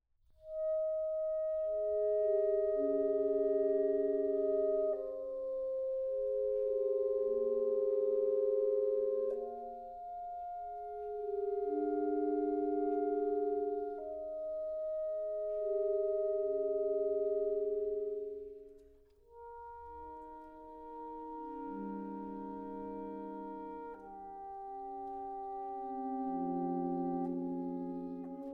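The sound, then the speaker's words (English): Slow, sustained chords from a saxophone quartet playing the opening of a movement by a contemporary composer, voices overlapping with gently clashing harmonies, swelling and fading in long phrases with no talking. “A very nice use of lovely dissonance there”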